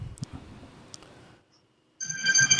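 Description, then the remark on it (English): A mobile phone ringtone starts abruptly after a short silence, a bright, layered electronic melody playing loudly, preceded by faint rustling and background murmur. “Huh, what's my phone ringing?”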